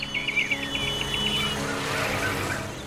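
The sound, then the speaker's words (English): A quick series of bright chirps from early birds at dawn repeats in a steady rhythm for about a second and a half, over a continuous low rumble of traffic that carries on after the chirping stops. “Like Ashish, Pratyusha B also misses catching the delicious noise that the early birds make at dawn.”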